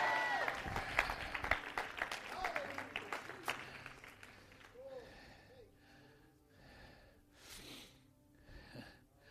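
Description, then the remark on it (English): A church audience stands, claps and shouts "yes": a loud, dense burst of many hands clapping with raised voices crying out, dying down after a few seconds into scattered shouts and breathy exclamations. “Everybody stand and clap your hands and shout yes!”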